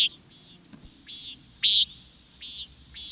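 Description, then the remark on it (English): A common nighthawk gives a series of buzzy, nasal flight calls, about five harsh peents spaced roughly half a second apart, clear above a faint low background hum. “The flight call of the common nighthawk vividly evokes a warm summer evening.”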